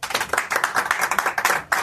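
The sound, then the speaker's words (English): About seven people clap for guest David Cross in a sparse, uneven patter, the individual hand claps distinct and sharp rather than blending into full applause, steady for a couple of seconds. “It's better if you don't applaud than have four people applaud.”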